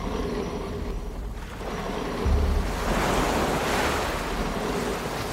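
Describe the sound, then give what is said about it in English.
Ocean waves wash and surge steadily against a heavy lifeboat being pushed into the sea, a continuous rushing swell that builds louder midway, with wind noise buffeting the microphone and no voices. “Push this fucker in the sea.”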